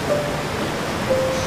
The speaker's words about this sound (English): I can't even paddle out to the lineup past the big waves.